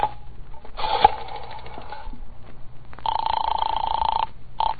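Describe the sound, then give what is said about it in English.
A telephone receiver is lifted with a sharp clunk over a steady tone, followed by a longer rapid, buzzing rattle of dialing and a brief final burst, all fairly loud, as someone calls the operator to reach the police. “I said hand me the phone.”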